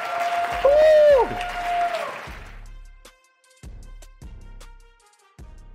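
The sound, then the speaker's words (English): An audience at the Marvin Francois Show bursts into applause with a high whistle ringing over the clapping, then it thins out into a handful of scattered, separate claps before fading. “Can we give Marvin a round of applause?”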